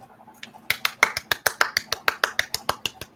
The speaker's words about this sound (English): I'm providing the applause track.